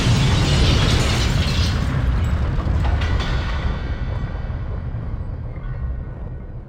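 A massive explosion stops a train and rips a huge hole through its metal walls. It roars out at full force, a dense, crackling blast that slowly fades into a deep, rumbling tail over several seconds, with no voices present.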